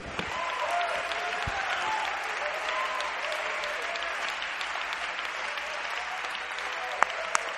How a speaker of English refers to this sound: Come on, just clap your hands unto the Lord, and out of your mouth just say, I receive it from you, Lord.